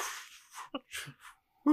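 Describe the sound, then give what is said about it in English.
A voice imitates sloshing bathwater with a few breathy, splashy mouth noises in short irregular bursts, ending on a brief voiced hum. “Moving bathwater, you know?”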